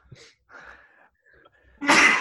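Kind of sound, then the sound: human body sound, sneeze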